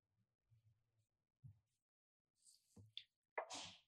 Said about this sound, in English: Bless you. For those online, someone sneezed.